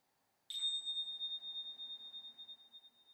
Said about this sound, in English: In a moment, I will ring a bell 3 times just to finish. Just like we track the breath, see if you can track or stay with each chime until it fades into silence.